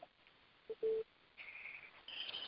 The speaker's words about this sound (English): And I'm sorry if you hear me beeping. Mine's beeping too.